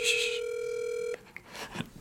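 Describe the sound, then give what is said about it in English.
An outgoing phone call to a girl rings: one steady electronic ringback tone holds for about a second, then cuts off abruptly, leaving faint rustling and a soft murmur of voices. “She's like screaming right now, probably that I'm calling.”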